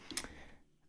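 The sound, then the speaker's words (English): A couple of quick, sharp clicks from a mid-range mechanical keyboard with a full steel chassis, close together and fairly quiet, with no talking and near silence afterward. “So, I've got a mechanical keyboard here.”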